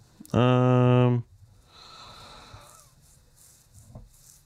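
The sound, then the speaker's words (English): A loud, voiced yawn holds a steady low tone for about a second, then trails into several seconds of soft, breathy exhaling and faint rustling. “As soon as you asked me a question, I yawned.”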